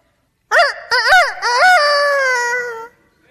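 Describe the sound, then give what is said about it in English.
A man's voice imitates a rooster crowing: a few short rising yelps followed by one long, drawn-out wavering cry, loud and strained, lasting about two and a half seconds. “Actually, that's probably the worst rooster impersonation in the history of the world.”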